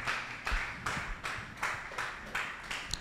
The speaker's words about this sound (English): As we welcome our Father to the pulpit, amen. Amen. Sustain the hand clapping, sustain the clapping.